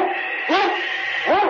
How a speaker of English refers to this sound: It's Yukon King, swiftest and strongest lead dog of the Northwest, breaking the trail for Sergeant Preston of the Northwest Mounted Police in his relentless pursuit of lawbreakers.